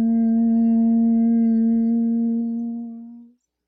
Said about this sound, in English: Or maybe the ancient yogis had it right by doing a deep inhale, followed by a long om.